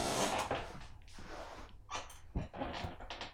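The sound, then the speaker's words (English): A squeaky chair creaks several times, with uneven, scraping groans and short squeals coming in irregular bursts as it shifts, and no one speaking. “This chair needs some oil or something.”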